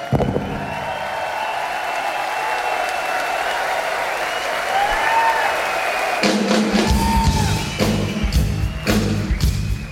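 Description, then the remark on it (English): A large crowd applauds and cheers loudly and continuously, with scattered high whoops rising above the clapping. Deep, regular thumps join in over the last few seconds. “Time to give you a round of applause.”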